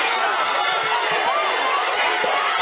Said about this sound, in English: This is one messy walk of shame as a man is led through an angry crowd outside his home.